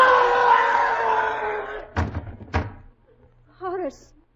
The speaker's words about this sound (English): Sounded like someone falling against the front door.